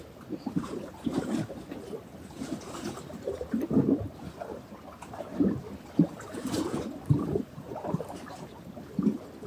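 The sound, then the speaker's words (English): Water flows and sloshes, a steady rushing wash broken by irregular little surges and splashes, with a faint breezy hiss underneath and no voices. “That's what the water says today. Flow, move, dance.”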